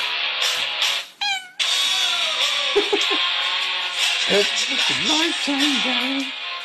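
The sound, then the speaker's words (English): A cat meows repeatedly in drawn-out, wavering cries, heard through a loud, bright, slightly tinny playback with a steady hiss underneath; a short rising chirp comes early, then several yowls toward the end. “I'm not a big fan of cats, but that is pretty funny.”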